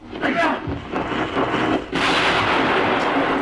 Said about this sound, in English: Quickly they unwound the cable on the roof. When Ian wrenched the end of the cable from the junction box, there was a flash and an explosion.